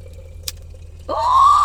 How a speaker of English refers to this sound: Go on and pour it. She pouring that drink, y'all.